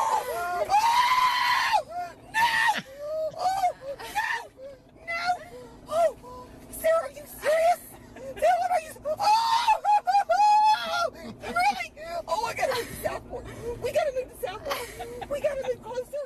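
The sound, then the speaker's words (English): A mother in a car lets out repeated high-pitched, excited shrieks and squeals, loud, in breathless bursts for over fifteen seconds, reacting with joy after her daughter tells her she is about to become a grandmother. “I mean, when you hear someone who is that happy.”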